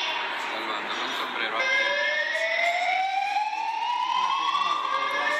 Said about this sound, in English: here's what we hear while we're sitting at lunch. I hope you can hear this okay. I'm going to put my phone up to this. All right. It's an alarm that went off at the hotel.